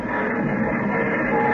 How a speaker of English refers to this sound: Now, here's the train. Right on time.